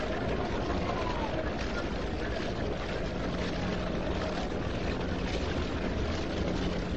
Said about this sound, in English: Subway train goes rumbling along back of the open bleachers behind center field.